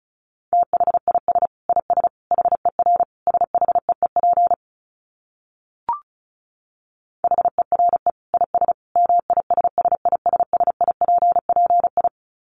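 Fast Morse code at around 35 words per minute: a steady mid-pitched tone keyed in quick dits and dahs, two long bursts split by a pause with a single faint click.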